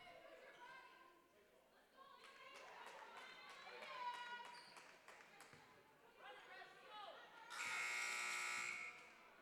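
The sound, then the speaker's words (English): The scorer's table buzzer at a basketball game between Anchor Bay and the Tars blares loud and harsh for about a second over the official, arena crowd noise and voices, cutting in sharply and stopping abruptly during a stoppage in play. “Scores table buzzes over the official.”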